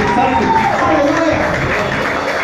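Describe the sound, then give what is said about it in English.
An audience claps and cheers for the fathers in the house in a loud, steady wash of overlapping applause that lasts the whole moment, with voices mixed into the noise. “I said, clap my father's in the house.”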